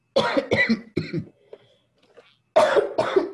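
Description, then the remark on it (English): A fit of harsh coughing from a dry throat after a lot of talking: three quick coughs, a short pause with faint throat sounds, then two more strong coughs. No talking. “Cough it again.”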